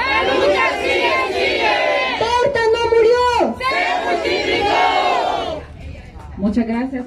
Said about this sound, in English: leads a crowd gathered outside in a familiar chant.